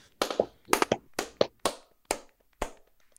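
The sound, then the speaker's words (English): Hands clap sharply about eight or nine times in an uneven rhythm, some claps coming in quick pairs, with brief silences between them and no talking, clapping out the Disney holiday movie The Santa Clause as the winner at the end of a bracket. “And so as we do at the end of every bracket, we are here to clap it out for the Santa Claus.”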